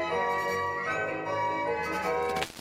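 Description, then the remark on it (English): A small notification bell chimes brightly with sustained, shimmering tones that stay loud and steady, then cut off abruptly near the end. No one speaks over it. “hit the subscribe button and ring this small notification bell”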